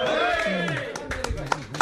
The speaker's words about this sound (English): So, well, you taught a lot of these people around here that's giving you a round of applause now.